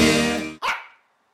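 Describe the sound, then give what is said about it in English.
A dog barks loudly in a dog pound, a drawn-out bark followed quickly by a second sharper one that trails off, with no one talking. “here we are in the dog pound.”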